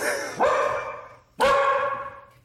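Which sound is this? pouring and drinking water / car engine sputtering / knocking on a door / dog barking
dog barking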